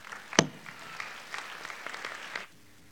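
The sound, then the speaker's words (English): An audience at Parkway claps for about two and a half seconds, a dense patter of many hands at moderate loudness, opening with one sharp louder clap before settling and then stopping abruptly. “Let's applaud.”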